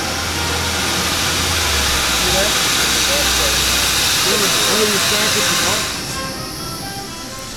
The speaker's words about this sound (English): Now he's going to add steam pressure and fuel pressure. Steam pressure.